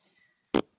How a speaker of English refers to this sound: Just cut Mr. Giuliani's mic for 1 second. He's farting into the mic again.